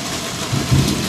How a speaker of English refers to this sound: It's a show where broadcasting in the desert rainstorm that's suddenly come upon us.